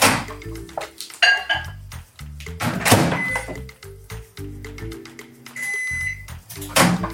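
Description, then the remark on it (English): A microwave oven hums while heating a chipotle oil mixture for one minute, with dull thunks of its door and short high-pitched beeps ringing out a few times; no one speaks. “Let's place the chipotle oil mixture in the microwave and heat it up for 1 minute.”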